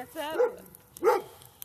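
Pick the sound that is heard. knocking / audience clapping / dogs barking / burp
dogs barking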